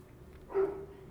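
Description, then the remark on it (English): A single muffled dog bark sounds, short and fairly faint against a low, steady background hum. “There's a dog barking in the background, which is going to really interrupt my thought process.”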